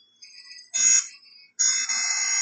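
An unexplained harsh, buzzy ringing like an old-fashioned alarm clock bell, not from a phone alarm, goes off in two loud bursts, a short one and then a longer one, with a fainter high tone between them and no voices.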